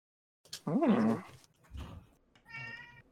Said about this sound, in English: Oh, cat. There we go.